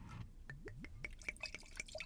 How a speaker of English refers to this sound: All right, let's pour this and see what's going on here. Okay.